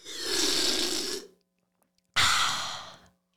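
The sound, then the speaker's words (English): Two breathy, hissing bursts of mouth noise, a voice imitating someone slurping a drink: a long airy slurp, a short pause, then a second, slightly shorter one, both fairly loud and with no talking. “I do the slurp and you do the noise.”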